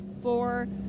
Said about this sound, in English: We're at about 9 seconds worth of fuel added to that 79 WeatherTech Racing Mercedes. As that car now rumbles back out, now the 93 hits its marks.